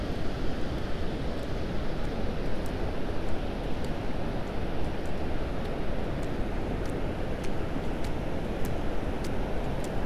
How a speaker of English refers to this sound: So, I'm gonna walk down to the shore. Let's see if we can get some more sound of the waves here for you guys.